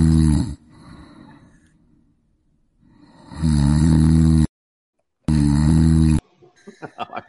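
Loud, rumbling snores come in heavy, drawn-out bursts separated by quiet pauses, harsh, with softer breathing between them and a brief voice-like sound at the end.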